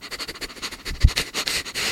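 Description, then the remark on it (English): A voice imitates sniffing with a rapid series of short, breathy inhales and exhales, lasting about two seconds with a brief thump midway. “Like sniffing you out. Sniffing me out.”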